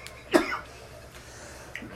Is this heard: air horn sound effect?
no